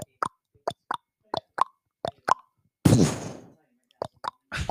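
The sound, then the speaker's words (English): A person imitates an Amish horse-drawn drive-by as a joke, with paired tongue clicks like trotting hooves, breaks off for a loud, wet, sputtering plop like manure dropping, then resumes the clicking rhythm. “I don't know. A horse shitting?”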